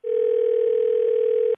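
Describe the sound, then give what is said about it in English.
A steady, continuous telephone dial tone hums at even loudness for about a second and a half, then cuts off abruptly. No voices are present. “We're going to have you call him back, kind of push his buttons a little bit, because I'm sure he's very upset right now.”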